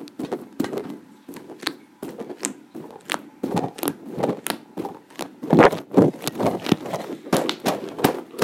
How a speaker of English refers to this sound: That was a squishy ball, and now it's stuck together.